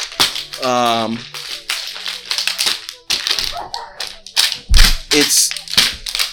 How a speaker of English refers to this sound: So all of the noise that you're hearing in the background is that they're actually hitting each other with a singular water bottle.